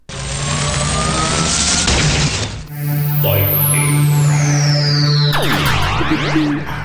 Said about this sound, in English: You got some lightning round questions for us, Ben? Pew-pew! Yes, I do, actually. Let's hit that jingle.